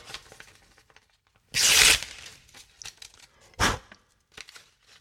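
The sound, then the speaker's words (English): A paper envelope is torn open to reveal an award winner, with a loud ripping burst, a second short tear, and scattered crinkling and rustling of paper in between. “You know, I wish we wouldn't have put this in an envelope because now we're just wasting paper on this here.”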